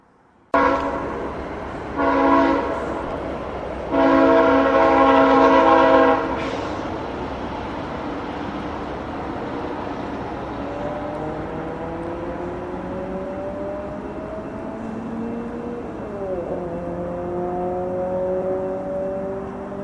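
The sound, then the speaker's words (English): A freight train sounds its horn in two loud blasts, a short one then a longer one, followed by the steady rumble of passing cars with whining, sliding metallic tones. “I think we got one more freight train coming, so stay tuned.”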